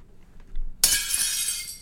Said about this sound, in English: Maybe this happens when you sing. It's plate smashing. That's right. Well done. Plate smashing.